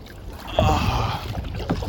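A small boat moves across the water with a steady wash and a low rumbling churn, rising slightly partway through. No one speaks.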